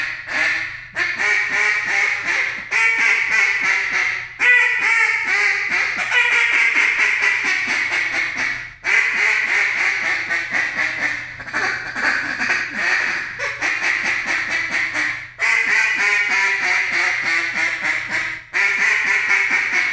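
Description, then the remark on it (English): Loud duck call quacking nonstop in rapid runs, shifting from single quacks into long descending greeting calls and fast chattering bursts, with only brief pauses between sequences. “Let me hear some quacks and some just transition into some greeters and some chatter and everything.”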